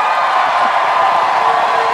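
A live audience cheers and shouts in a steady, dense wash of crowd noise, loud and continuous for the whole moment with no single voice standing out.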